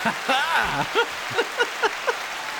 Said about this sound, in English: The applause are amazing. You're on a roll.